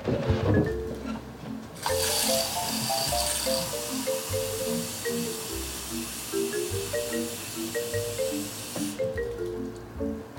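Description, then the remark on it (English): Water pours steadily into a measuring cup for several seconds while measuring 3 cups of water for a recipe, a broad hissing rush that starts abruptly and cuts off, with background music playing throughout and no talking. “So next up is 3 cups of water. So that's 2 cups. So fill that up.”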